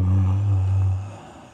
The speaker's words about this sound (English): try to yawn away from the mic. I can't. It picks up really badly.